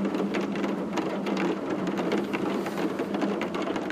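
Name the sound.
rain falling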